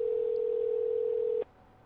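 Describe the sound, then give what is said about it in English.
A steady electronic telephone ringing tone hums for about a second and a half during an outgoing call, then cuts off abruptly, leaving faint line hiss. No one speaks. “Uh-oh. It's ringing. It's ringing.”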